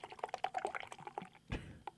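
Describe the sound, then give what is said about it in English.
Beer pours into a glass with a quick run of gurgling, bubbly splashes, then a fuller foaming gush near the end, fairly quiet. “Oh, maybe I didn't hard pour it.”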